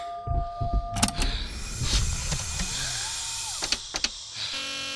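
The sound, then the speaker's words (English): An emergency door sealing shut after its red emergency seal button beside the door is pressed: a motorized whir with a rising and falling hum, broken by sharp mechanical clicks and a few heavy clunks before it locks into place. “It's the red button to the left of the door marked emergency seal.”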